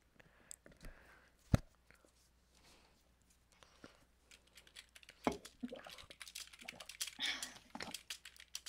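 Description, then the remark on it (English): Quiet typing on a computer keyboard while scripting, irregular clusters of soft clicks with a few sharper taps, growing busier and denser toward the end, with no talking. “I'm just gonna be scripting while we're in this call.”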